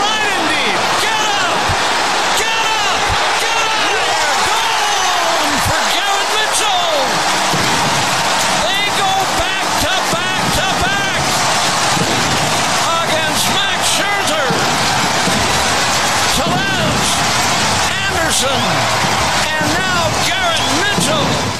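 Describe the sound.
A baseball stadium crowd roars loudly and continuously for over twenty seconds, a dense wall of cheering for a ball hit in the air by Garrett Mitchell as the Milwaukee Brewers play the Mets. Broadcaster Bob Uecker's excited voice on 620 WTMJ is barely audible underneath.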